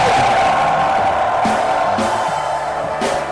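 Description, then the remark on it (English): A church audience shouts and cheers to the Lord in a continuous loud roar of many voices, with several sharper bursts of whoops and yells rising above the dense crowd noise. “Give the Lord a shout for establishment.”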